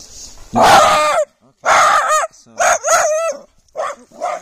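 A dog named Laurie barks and whines excitedly in several bursts, loud, with high yelping, whining tones between the barks and no talking, eager to greet another dog that has just walked nearby.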